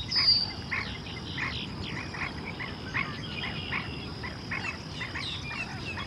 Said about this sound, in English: There's a flock of blackneck stilts. Hear them?